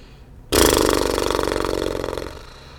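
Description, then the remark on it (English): During a guided meditation breathing exercise, a person blows out a breath through loosely flapping lips, imitating a horse's snort: one sudden, loud, buzzy flutter that rattles steadily for nearly two seconds, then fades away. “And the next breath, we're going to let it out like a horse.”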